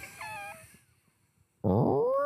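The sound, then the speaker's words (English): During a game of audio Pictionary, someone imitates the AOL creaking door sound with their voice: a brief whiny tone, a short pause, then a louder, strained, wavering groan that runs to the end. “It was actually the AOL door, just to be precise.”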